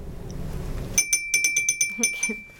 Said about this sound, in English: have you got your buzzer ready? Oh, I'm ready this time, I'm on it.